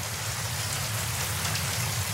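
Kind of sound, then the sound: nature, rain falling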